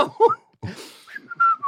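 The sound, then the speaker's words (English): A person whistles a few short notes of a tune, clear, with shifting pitch, following a brief burst of muffled vocal sounds and rustling. “Like, I looked the other, I think I had my hands into my pocket. I was whistling, put my foot out.”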